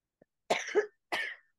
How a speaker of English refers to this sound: But yeah, super joints always make me cough real bad.